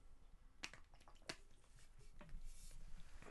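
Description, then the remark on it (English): Someone takes a swig of water: two sharp, wet gulping clicks, then softer liquid squishes and mouth noises, all fairly quiet with no talking. “I had to take a swig of water.”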